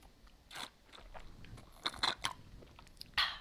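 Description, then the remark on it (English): Someone sips from a juice box, with a few short slurping bursts through the straw and faint crinkling of the carton. Nobody speaks, and the sounds are soft. “Take a sip from my juice box that I've stolen from my kids.”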